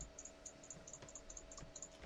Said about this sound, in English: Just sitting over here clicking.